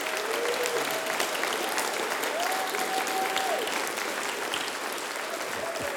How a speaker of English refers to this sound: Come on, let's give them a great clap. Thank you. We love you, Busselton. Come on, let's clap a little bit louder.